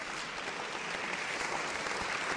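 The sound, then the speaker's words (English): An audience breaks into applause, a dense, steady wash of many hands clapping that holds at an even, moderate level throughout with no voices standing out. “And that's when the applause comes in.”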